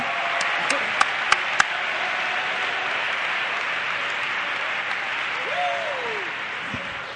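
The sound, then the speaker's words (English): A church audience applauds steadily in praise of the Lord, a dense, continuous wash of clapping, with a few sharper individual claps standing out near the start and scattered voices calling out beneath it. “You ought to clap your hands like you believe the church is going on in revival, in power.”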